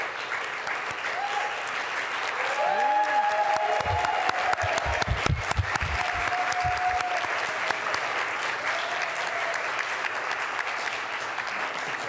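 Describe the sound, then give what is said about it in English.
A church audience applauds steadily for about twelve seconds for the adult volunteers who led a week-long youth mission trip, a dense, even wash of clapping with a few louder claps and faint murmuring voices mixed in. “So, and they deserve every bit of applause because these adults spent a week”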